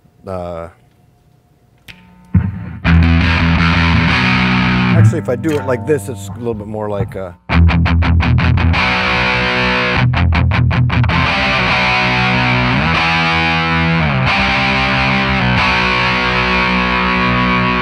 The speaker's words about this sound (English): I feel like a pedal like that, you gotta play a riff like that. Yeah. That's kind of my main, just sort of like distortion, overdrivey sort of pedal.